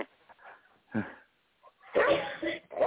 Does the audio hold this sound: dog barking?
yes